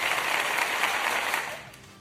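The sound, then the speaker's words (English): A crowd applauds, a dense wash of many hands clapping at once, steady and fairly loud before tapering off toward the end. “Hey, so, you get an applause.”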